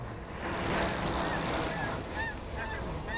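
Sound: geese honking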